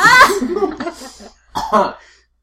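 Fairly loud sputtering coughs in two bursts after soda went up the nose: a longer, raspy fit that trails off, a brief silence, then a shorter second round of coughing.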